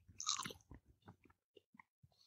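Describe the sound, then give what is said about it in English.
A crisp crunch of someone biting into an edible cricket opens with a burst of bright crackling, followed by several softer, irregular chewing clicks and squelches that trail off, with no talking. “Genus and species, let's eat this prick. Let's do it. One, two, crunch.”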